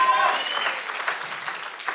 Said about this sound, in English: Come on, somebody, give God a clap offering right now. Worship him like you know he deserves to be worshiped.